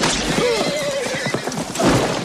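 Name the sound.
horse whinnying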